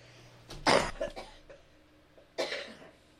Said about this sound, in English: I'm going to cough.